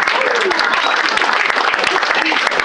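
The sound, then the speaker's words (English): An audience at Punchline applauds steadily, a dense wash of many hands clapping at once with no pauses. The applause stays fairly loud and even from start to finish, with faint voices mixed into the crowd. “So, Punchline, round of applause for coming out for yourselves when you could be protesting.”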